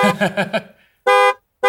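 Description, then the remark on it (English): A car horn honks four times in quick succession with a slightly wavering tone, then a longer steady blast sounds after a brief pause, followed by the start of another loud honk. “Here's what honking 14 times sounds like.”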